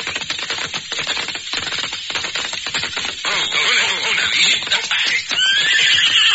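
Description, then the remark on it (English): A thirsty horse arriving at a water hole whinnies loudly, a shrill, wavering neigh that rises at the end, following a stretch of rapid hoofbeats and rustling movement. “Horses are thirsty. We'll water them after we fill our canteen.”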